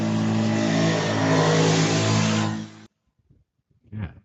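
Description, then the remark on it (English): A motorbike engine revs loudly as it rides past in a quiet neighborhood at night, a steady throaty drone for nearly three seconds that cuts off abruptly, followed by near silence and a brief faint sound. “You on a moped doing the show?”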